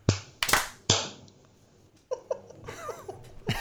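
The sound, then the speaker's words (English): Several sharp hand claps from a small group, made to sync audio, land close together but not quite in unison, loud, followed by a pause and then light laughter and voices. “Okay, shall we clap?”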